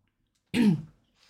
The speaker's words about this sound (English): Excuse me. Apologies for intermittent coughing. I have had COVID.